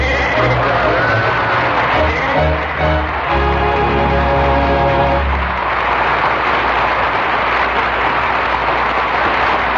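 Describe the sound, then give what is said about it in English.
A flock of sheep bleats loudly outside, many overlapping calls for about five seconds, then the bleating gives way to a steady, dense rushing noise. “he's brought all his little sheep friends with him.”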